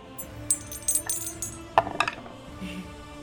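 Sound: dice rolling and clattering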